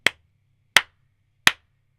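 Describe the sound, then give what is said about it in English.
Three crisp key clicks on the W keys of a keyboard with Gateron blue switches, evenly spaced about three-quarters of a second apart, each a sharp bright tap that dies away quickly, with near silence and no talking in between. “And for you emo gamers, now I am clicking on the sad W keys.”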